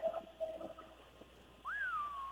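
A person whistles: a few short steady notes, then a brief pause and a long swooping whistle that rises sharply and slowly glides back down. No talking, moderately quiet.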